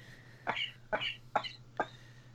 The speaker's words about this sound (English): Coughing. You need to stop coughing.